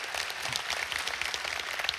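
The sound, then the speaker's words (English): A crowd applauds, with many hands clapping in a dense, steady patter that holds at an even, moderately loud level for the whole couple of seconds. “You can clap for that.”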